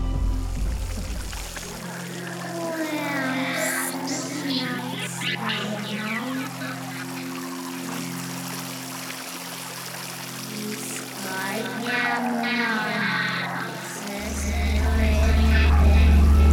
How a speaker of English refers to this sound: Look at these water fountains. They're plexiglass cylinders with the water running straight up in bubbles and then running off the top.